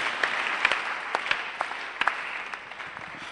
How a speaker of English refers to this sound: Oh, your hand clap was short-lived. Hallelujah.